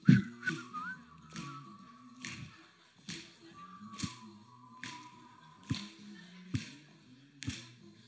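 An audience at a live performance whistles a simple, mostly steady tune over a regular beat of sharp snaps or taps and a low, thumping backing, moderately loud and continuous throughout.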